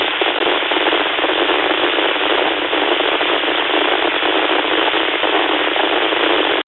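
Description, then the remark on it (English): Dense, loud radio static on an amateur radio net frequency during check-ins to the Absolute TechNet hisses steadily with a crackly, popping texture, band-limited like a receiver speaker, continuing without pause and cutting off abruptly at the end. No voices are heard. “Does static have a call sign?”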